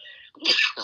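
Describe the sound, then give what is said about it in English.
A single sharp sneeze from a person with sniffles: a brief breathy intake followed by a loud explosive burst of air that trails off quickly, with no talking around it. “Bless you.”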